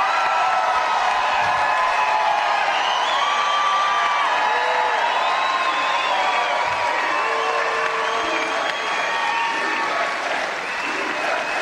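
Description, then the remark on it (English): A large CPAC rally crowd cheers and applauds Donald Trump steadily, a dense wash of clapping with shouts and whoops rising through it, loud and sustained throughout without any clear talk. “But it's just a CPAC crowd.”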